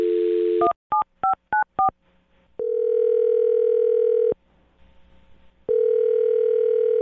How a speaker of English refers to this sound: So we'll find out right now. I'm going to dial his phone number and get him on the phone and see if we can get you an answer, okay?